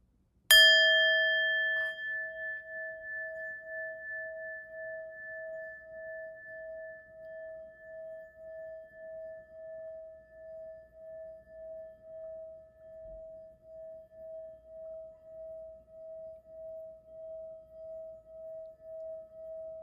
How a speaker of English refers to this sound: So close your eyes and focus on your breathing and just listen for a moment to the singing bowl.